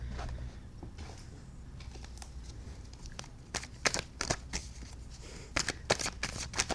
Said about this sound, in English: It kind of sounds like fapping on the microphone a little bit, but it's me shuffling cards, guys.